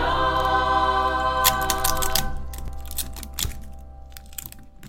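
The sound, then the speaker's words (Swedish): Packing tape rips off a roll in a series of sharp, crackling bursts, followed by crinkly scrapes and a few dull thunks as it is pressed onto a cardboard box, over a steady low hum. “Vad håller du på med? Ja. Jag tejpar lådan.”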